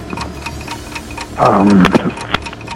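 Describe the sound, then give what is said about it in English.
A steady, rapid ticking of a 60-second countdown clock for a ten-question quiz runs throughout, with crisp evenly spaced clicks, briefly joined midway by a louder tonal swell before the ticking carries on alone. “Your clock starts now.”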